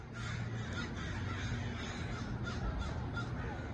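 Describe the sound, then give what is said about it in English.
A dense, continuous chorus of many crows cawing at once, overlapping harsh calls filling the air steadily over a low background rumble, as a large flock gathers to roost in trees in a downtown area in the evening. “It's just clouds and clouds of crows showing up to roost in trees in this downtown area.”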